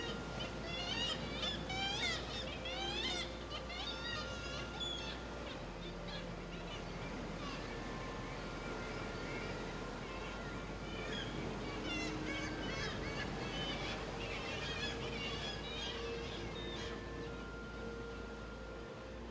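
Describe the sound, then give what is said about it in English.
Many kittiwakes call at once at a colony on the vertical black rocks of Skellig, their repeated nasal cries overlapping in a busy colony chorus, over a steady low engine rumble and wind. “Kittiwakes, onomatopoeic, because they say kittiwake, kittiwake.”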